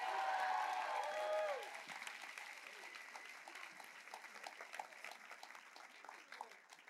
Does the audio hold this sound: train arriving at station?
no